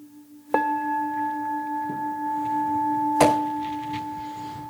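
A meditation gong is struck, giving a bright metallic attack and a long, steady ringing hum of layered pitches. A second strike about three seconds later renews the shimmer while the tone sustains.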